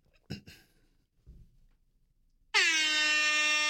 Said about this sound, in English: let's all take an air horn pause while Tom looks for it